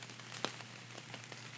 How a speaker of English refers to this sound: And before you open your eyes, take one more moment to just take in the sound of the rain, and relax.